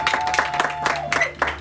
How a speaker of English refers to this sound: So, clap for Jesus.